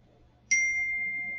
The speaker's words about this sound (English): And then you see there is a ding right there. Well, I got Messenger coming up in three places, and this Messenger's on my phone.